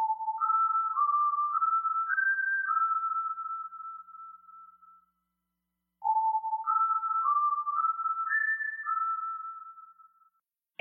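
Eerie theme music from The X-Files: a slow, pure-toned electronic whistle melody of rising stepped notes with long echoing tails, played twice with a short silent pause between the phrases and no voices.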